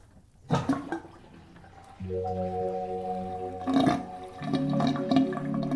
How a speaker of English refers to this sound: Yeah, I didn't know I'd be so into water sounds. Water sounds, mate. That's my shit.